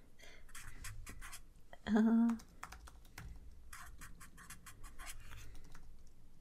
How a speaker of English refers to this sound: One sec. I'm writing down names.